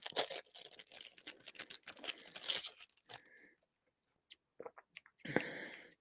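Busy crinkling and tearing of plastic packaging for a few seconds, a brief pause, then a few sharp clicks and a final loud crackling rustle as items are pulled free of the package.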